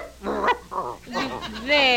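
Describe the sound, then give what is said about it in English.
Brutus, an attack dog, barks four or five loud, high, whiny yelps in quick succession over a couple of seconds, with no other sounds around them. “Oh, and we'll have to retrain our attack dog, Brutus.”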